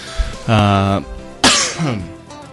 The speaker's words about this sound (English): Sorry, I go coughing into people's ears all across the planet.